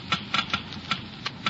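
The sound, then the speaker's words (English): A Geiger counter clicks slowly and irregularly, about six sharp, crackly ticks spaced unevenly over a low, steady background hum, measuring the wear rate of engine parts lubricated with new RPM motor oil. No one speaks. “You have just heard Geiger counters clicking off the scientific proof that new RPM motor oil is years ahead.”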